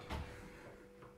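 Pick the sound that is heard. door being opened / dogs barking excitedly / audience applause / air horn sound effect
door being opened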